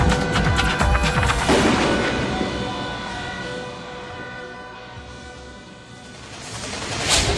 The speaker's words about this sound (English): Am I hearing things? No, that's fireworks. Why? Why the fireworks? It's not even July. It's not even dark.